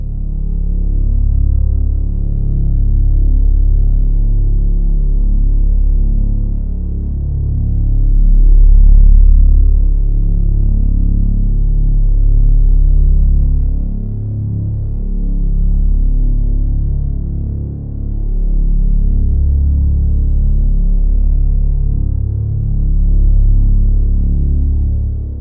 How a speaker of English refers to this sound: According to researchers, there is no consensus as to what is causing the hums across the globe, and to this day, it all still remains a mystery. Here is an actual recording of the hum.